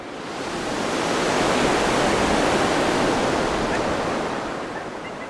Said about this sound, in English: And no one said anything. So for about 15 minutes or so, the only sound on that beach was the waves crashing against the shore.